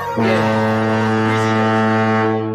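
A single loud, sustained touchdown foghorn blast with a deep, buzzy low tone rich in harmonics, starting abruptly and holding steady for over two seconds before fading slightly at the end.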